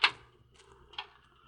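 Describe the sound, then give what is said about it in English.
A hospital ward door is opened: a sharp latch click, a brief creaking shuffle, then a second softer knock about a second later, over a faint low hum. “You open that door”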